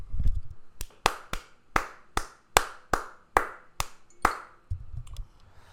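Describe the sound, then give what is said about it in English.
A slow, steady golf clap from one person, given in tribute to Borna Coric's Masters 1000 tennis win: about ten crisp, evenly spaced hand claps, with no talking over them and a faint low rumble at the start and end. “To win a Masters 1000 event, you got to stand up, you got to give the golf clap, man.”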